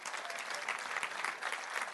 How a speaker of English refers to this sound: Can you clap your hands like you mean it? Can you do that?